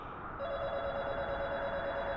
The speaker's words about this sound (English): I'm not dreaming the phone is ringing?